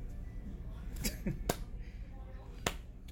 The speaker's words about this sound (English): What are you doing? Why are you clapping? I don't know. It was funny.